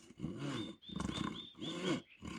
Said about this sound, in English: In this moment, it was the sawing of a log.